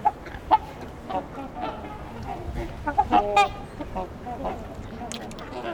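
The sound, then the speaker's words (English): A busy chorus of ducks quacking in repeated bursts, with fainter cries of ring-billed gulls carrying from the distance in the background. “A lot of familiar quacking sounds. Some ring-billed gulls in the distance, too.”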